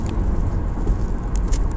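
Steady, heavy low rumble of road and engine noise from inside a moving car, the Mobile Car Studio, on April 15, 2020, around 9:15 a.m. Eastern Daylight Time. The noise is constant throughout, with a couple of faint brief high clicks near the end and no voices.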